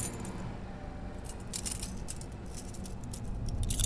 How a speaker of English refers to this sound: I gotta take the cuffs off first.